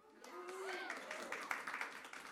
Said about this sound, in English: And you're clapping for her, and some of you don't even know who it is yet.